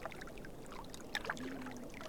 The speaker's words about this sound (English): For now, I will let the sounds of the water provide a little background.